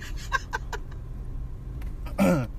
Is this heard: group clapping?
no